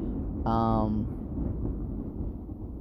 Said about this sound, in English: Okay, it's January 23rd. It's been like 2 days, and I'm hoping that you can hear me over the wind. This is actually less than what it's been for the last couple of days.